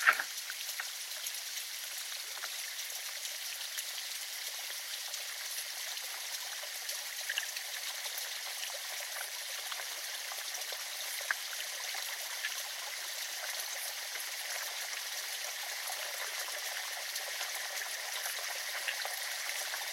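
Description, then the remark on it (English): A steady, bright rush of stream water flowing over stones, continuous, with fine splashing texture throughout and no voices. “We dipped our feet in the water.”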